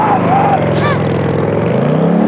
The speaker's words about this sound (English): Wait a minute. It's just a motorcycle. It's not a moped.